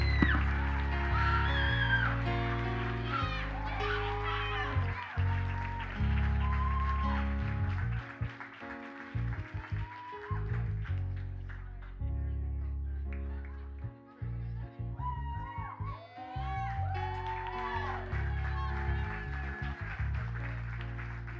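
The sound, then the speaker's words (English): A church audience claps and cheers loudly and steadily for about twenty seconds during a service, with high whoops and shrill shouts rising over the dense, continuous applause. “We're going to make some noise for them.”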